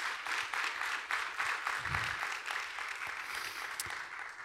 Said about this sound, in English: I think we can give God a round of applause for that, can't we?